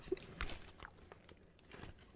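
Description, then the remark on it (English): Wet crunching as food with mold on it is bitten and chewed, several sharp crisp bites followed by softer irregular mastication sounds, with no talking. “Now savor it, at least 30 chews, and then give us a review.”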